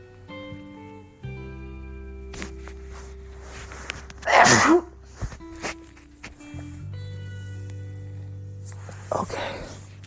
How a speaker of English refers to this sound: Now, hold on, I gotta sneeze.